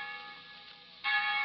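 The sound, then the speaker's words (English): College bells in ivy-covered towers ring with a sustained, shimmering tone, then a fresh, louder strike blooms about two-thirds of the way through. No voices, just the resonant chime hanging in the air. “From scores of ivy-covered towers, the bells of our colleges have summoned young America back to the lecture halls and libraries.”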